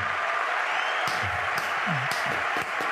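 Steady, dense applause fills the whole clip at an even level, with a few sharper claps standing out and faint vocal sounds underneath.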